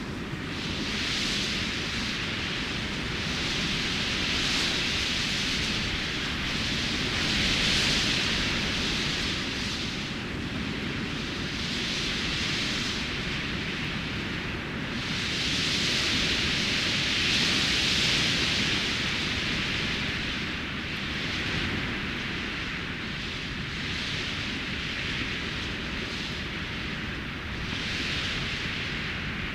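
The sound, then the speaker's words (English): Gusting wind hisses steadily through a cactus's countless clusters of stiff, sharp spines, a dense sizzling sound like frying food, swelling and easing in slow gusts every few seconds. No voices are heard. “Sounds like something sizzling in a frying pan. But it's the cactus singing in the wind.”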